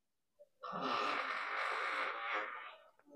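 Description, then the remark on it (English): A person blows a long, buzzing raspberry with the mouth, imitating a fart, sustained for about two seconds, with no talking. “…, you make any more fart noises?”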